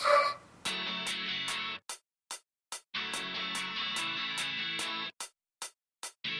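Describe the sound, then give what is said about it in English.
A dog barks excitedly in quick, steady bursts, loud, while a ringing doorbell chime plays twice beneath it as a UPS delivery arrives, leaving gaps where only the sharp barks continue. “Well, it's the doorbell and the dog going bananas.”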